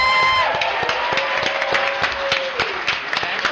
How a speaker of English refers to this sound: Come on up. Come on up, guys. Big round of applause